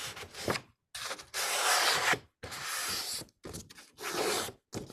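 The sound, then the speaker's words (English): Paper being folded in half: a series of dry, crisp rustling and rubbing bursts, some short and some drawn out over a second, separated by brief pauses, with no voices. “So what I want to invite you to do today is take that piece of paper that you brought, and whatever size it is, I want you to fold it in half.”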